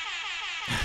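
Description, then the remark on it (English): A loud, brassy air horn blast from a phone app, the kind used as a hip-hop sound effect, blaring steadily with a buzzing, harmonic-rich tone before ending in a rougher burst of noise. “I'm going to say I would fuck my hip-hop air horn.”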